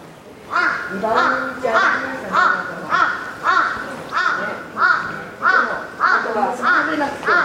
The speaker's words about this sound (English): And I can hear that crow really loudly, but above me is just a tangle of power lines. I don't even know where it is.